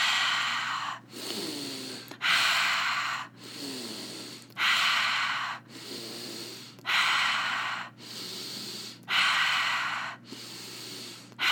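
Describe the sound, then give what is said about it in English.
Steady deep breathing with no talking: about eight or nine airy breaths alternate between inhaling through the nose and exhaling through the mouth, each lasting roughly a second in an even rhythm. “Breathing in through your nose and out through your mouth.”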